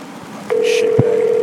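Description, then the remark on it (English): Outgoing phone call sounds: a click, then a steady electronic line tone holding continuously, with a short higher beep and another click partway through, with no talking. “I hope this piece of nut fucking shitbag motherfucker opens up, right? Pick up the phone, asshole.”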